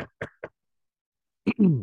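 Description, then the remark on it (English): Three quick, sharp knocks in a rapid rhythm on a door, in a mock scene of the Patriots knocking in Baltimore to ask for Lamar Jackson, followed by a short pause and then a brief voice. “There's someone in Baltimore that the Patriots should actually be knocking on the door.”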